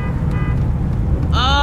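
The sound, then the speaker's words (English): Steady low rumble of engines in heavy rush hour road traffic, with car horns honking, one brief and then a louder sustained blare toward the end. “Damn, this rush hour traffic is killing my butt.”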